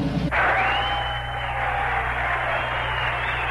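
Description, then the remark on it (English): A crowd cheers and applauds in a dense, steady roar of clapping and voices that swells at the start and holds at a loud, even level without letting up. “You'd think the cheering might have been a little more restrained.”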